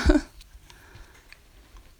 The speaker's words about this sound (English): Maybe you heard that cat sneeze. I hope you did.